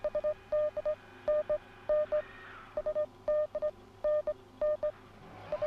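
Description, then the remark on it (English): A mid-pitched electronic tone beeps over and over in quick, evenly spaced clusters, like an automatic radio SOS signal, with a faint hiss of radio static underneath and no voices. “An automatic radio SOS signal, Atlanta. It's going beep beep beep beep beep beep beep beep beep.”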